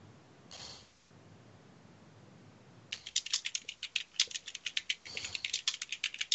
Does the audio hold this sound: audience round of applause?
no